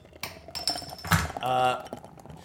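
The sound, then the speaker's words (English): Light metallic clinks and handling clatter, then a sharp crack with a brief hiss as a can of Guinness draught is opened, followed by a short tonal gurgle as it is poured out. “Let's crack open the Guinness, Rog. You've got the Guinness draft.”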